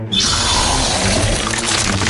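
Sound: water splashing sound effect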